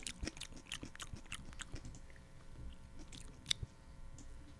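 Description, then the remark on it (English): Crisp crunching of a raw carrot being chewed, a steady series of sharp bites and grinding chews with one louder snap near the end, no talking. “I'm having a carrot then.”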